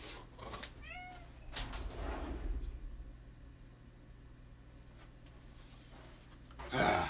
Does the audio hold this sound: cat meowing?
yes